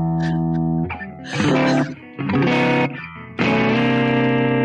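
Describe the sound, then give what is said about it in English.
A gritty, overdriven electric guitar played through an amp with the volume set around 4 plays a few sustained chords and short riffs, its thick harmonic buzz swelling loud between brief dips, with no voices. “I mean, that sounds overdriven.”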